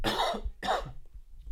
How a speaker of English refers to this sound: Sorry, I'm trying not to cough in the mic.